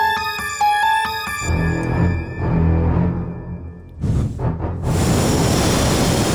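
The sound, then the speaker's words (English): A brief musical chime gives way to strong wind roaring, swelling into loud, steady gusts that fill the last few seconds, with no voices. Hot, windy weather in Phoenix. “The wind. The wind is strong.”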